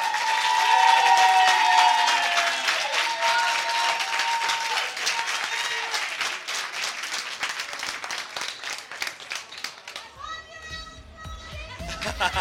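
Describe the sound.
A crowd bursts into steady, energetic applause with high cheering voices mixed in, holding strong for about ten seconds before thinning out as other voices and sounds take over.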